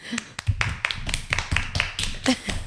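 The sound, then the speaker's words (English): A short round of applause from a handful of people: sharp, uneven hand claps crackling at a quick, irregular pace, moderately loud, with faint voices mixed in. “Round of applause.”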